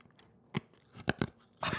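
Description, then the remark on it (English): Crunching of a strawberry Runtz hard candy being bitten and chewed, several sharp brittle crunches in quick succession, loud, with no talking. “You hear that glorious sound? What a crunch. That's a strawberry.”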